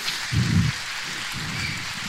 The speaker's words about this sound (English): I think we need to give every police officer and firefighter a huge round of applause today for all they do for our communities.